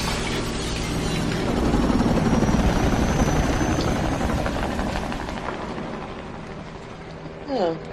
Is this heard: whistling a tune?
no